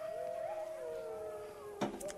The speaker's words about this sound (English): Clink it.